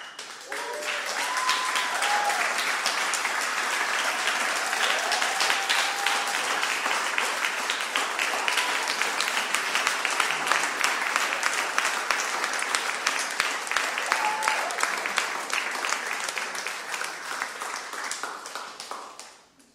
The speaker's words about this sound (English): I want you to see everyone here clapping for Jesus and believing that what God's doing in your life. I want you to see them too.